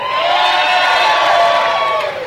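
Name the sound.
audience screaming and cheering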